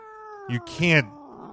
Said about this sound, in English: We have cat sound effects.